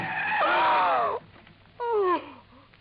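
A car brakes hard on a rutted desert sand track between yucca plants and a Joshua tree, tires skidding and squealing in two bursts: a long, loud screech, then after a short pause a second, briefer one that trails off. No one speaks.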